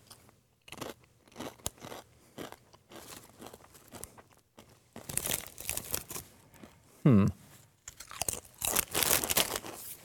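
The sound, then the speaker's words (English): Loud crunching and chewing of Blazin' Buffalo Ranch Doritos tortilla chips, with repeated sharp crisp bites and bursts of crinkling, plus a brief vocal sound near the end. “Sorry for crunching into your ears, by the way.”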